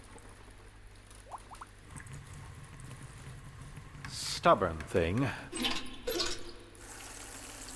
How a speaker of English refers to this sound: Leaky faucet, it seems.